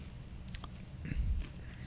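Biting into a sandwich, followed by a few soft, moist chewing sounds with low thumps against quiet room tone.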